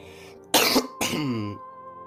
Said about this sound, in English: Sorry, that was just a cough.